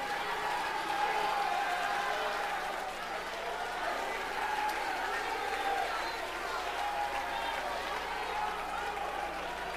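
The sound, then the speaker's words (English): A church audience stands and claps and shouts with a voice of triumph, a dense, steady roar of many hands and raised voices that stays loud and unbroken for about ten seconds. “One more time, I want everybody to stand to your feet and clap your hands and shout with a voice of triumph.”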